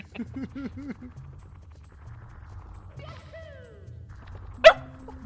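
A dog gives a quick run of short, yipping barks at the start, then goes quiet under a low background rumble, with a sharp knock near the end.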